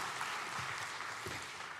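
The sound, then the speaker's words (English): A crowd claps steadily, a dense wash of many hands with no clear individual beats, holding an even loudness for about two seconds. “Everybody, give him a round of applause for coming.”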